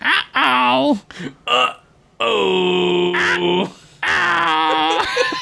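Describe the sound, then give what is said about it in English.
A person imitates a parrot with a series of loud, harsh, nasal squawks, several short bursts followed by two longer drawn-out screeches. “You do a good parrot, actually.”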